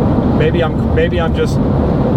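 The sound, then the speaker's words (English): Steady, loud low rumble of road noise inside a moving car, unchanging for the whole stretch, with a person speaking briefly over it. “I think there's quite a bit of road noise, yeah.”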